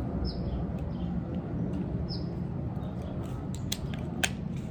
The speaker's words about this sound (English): These planes always want to be in the podcast, so I'm going to pause a little bit for this plane while it goes by. You can hear it, I know you can.